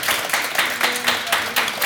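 A crowd applauds steadily, many hands clapping together in a dense, continuous wash of sound that stays fairly loud throughout.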